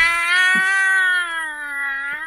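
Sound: kittens meowing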